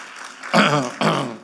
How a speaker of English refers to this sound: How about the Christmas decorations? Somebody give it up a hand clap for all the decorations that just appeared.